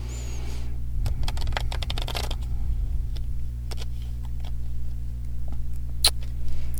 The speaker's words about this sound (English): And okay, so I'm going to put it back in the deck now. And I'm going to shuffle. As I'm shuffling, I'm going to you know, just say another prayer.